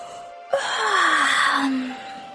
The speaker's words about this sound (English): He yawned.